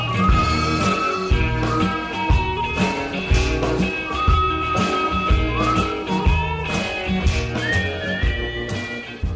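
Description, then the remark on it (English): Someone whistles a bright pop melody, the tune gliding up and down between notes over a steady, loud backing track of thumping bass and drums. “Who did the whistling? Me.”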